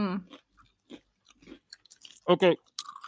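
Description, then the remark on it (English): Dry crunching of Ryvita rye crispbread being chewed, a handful of short brittle bites spaced irregularly, with a brief murmur and a couple of quick spoken words in between. “That crunch.”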